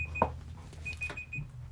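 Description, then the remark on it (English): A timer alarm left running beeps in short, repeated high-pitched tones, fairly faint, over a low background rumble with no one talking. “I forgot to turn off the fucking timer.”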